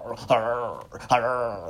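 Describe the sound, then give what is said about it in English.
A voice imitates a Chihuahua, a small aggressive dog, snarling: two short, tense growly bursts with a sharp attack, fairly loud, one right after the other. “And they the most angriest dogs you ever did see in your life. Like, why are you so upset? And they snarl.”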